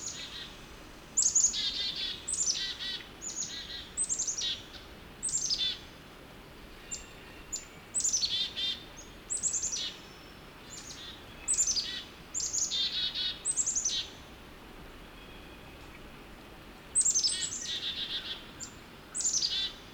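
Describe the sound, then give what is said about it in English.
A flock of chickadees calls agitatedly, with repeated high, buzzy notes in quick bursts, overlapping and persistent over a faint background hiss, with no voices. “Heading back to my car, I come across a group of chickadees. They sound upset about something.”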